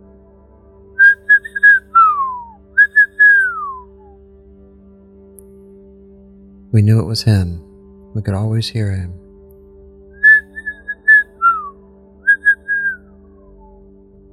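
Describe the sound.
A person whistles a distinctive call, like a father's whistle calling children home for dinner: a short held note dropping into a long downward glide, played twice, then repeated after a brief stretch of talking. Clear and fairly loud.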